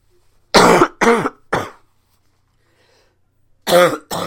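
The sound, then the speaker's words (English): Three harsh coughs in quick succession, a short pause, then two more strained coughs and throat-clearing bursts, loud, with no speech, from a person choking on a cough drop held in the mouth. “I made the mistake of trying to hold on to a cough drop in my mouth and it did not work.”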